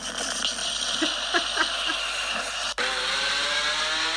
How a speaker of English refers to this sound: That's a motorbike. It's a remix, though. Yeah, that's not a Lamborghini.